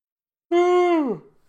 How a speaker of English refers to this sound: Excuse me, the yawns are coming out.